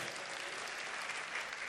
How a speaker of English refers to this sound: Oh yeah, let's give the word of the Lord a round of applause.